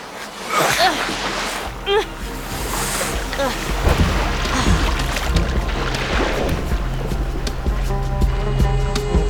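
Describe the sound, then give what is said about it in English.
A rowboat moves through water, oars dipping and splashing in an uneven rhythm while water sloshes steadily against the hull, moderately loud, with muffled voices in the background. “You want me to get in the rowboat?”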